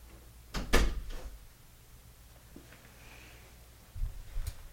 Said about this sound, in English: So we're just in a bedroom and we have the door shut, and his dog is like whining at the door because I have some food in here and she can probably smell it, but I'm trying to get the dog away.